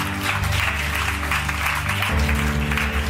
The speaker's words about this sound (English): The clapping is because we're celebrating.